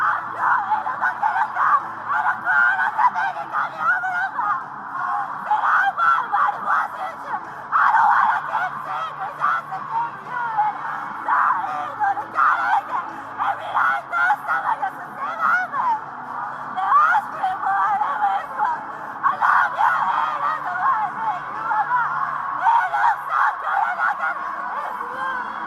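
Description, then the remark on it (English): A person in a social media video screams loudly and almost without pause, shrill, strained cries surging and breaking over and over, with occasional cackling, laugh-like bursts mixed in. “It's just someone screaming, similar to like how I probably sound when I'm screaming at a concert.”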